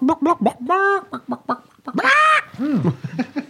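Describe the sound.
A person imitates a chicken, with a quick run of short clucks broken by two drawn-out, squawking bawks. The voice is fairly loud, and no other sounds accompany it.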